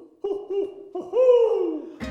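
A squeezed squishy toy owl lets out three wheezy, squeaky hoots in quick succession, the last one longest. It's fairly loud, with no voices, and ends in a brief clattering rustle.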